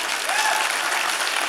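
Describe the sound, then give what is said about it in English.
Steady applause from a crowd, a dense, continuous crackle of many hands clapping at even loudness for the whole moment, with a faint voice rising briefly underneath. “Come on, clap a little louder, man.”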